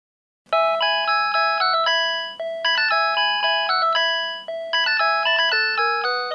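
A bright, synthesized mobile phone ringtone plays a quick melody from Vivaldi's Four Seasons in short repeating phrases of stacked electronic tones, loud, with a faint steady hum beneath and no voices.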